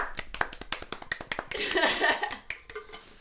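A short burst of applause from a few people: sharp, irregular claps that thicken into a brief busier patch with some vocal noise in the middle, then thin out to scattered claps.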